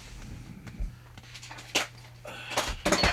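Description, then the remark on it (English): Someone knocks over stacked objects, which tumble in a series of irregular clattering knocks and thuds, the loudest bunching together toward the end, over a steady low hum. “You can hear me knocking all this shit down.”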